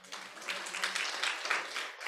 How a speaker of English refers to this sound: Stand with me at this time, if you would, and offer him a round of applause.